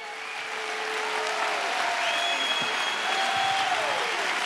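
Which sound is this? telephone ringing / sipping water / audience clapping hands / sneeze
audience clapping hands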